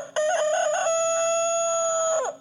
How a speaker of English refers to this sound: So there's peeping, clucking. Then there's morning crowing.